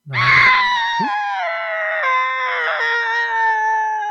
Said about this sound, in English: How therapeutic. Just screaming.